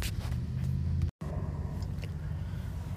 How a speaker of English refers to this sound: If you guys are like hearing what sounds like wind, it is. It's really windy out here right now. But hopefully it won't affect the podcast too much.